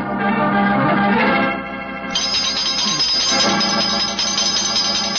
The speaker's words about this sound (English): I've retired and I'm leaving for Sussex in a few days. And if any more clients come wrenching at my doorbell, I shall ignore them.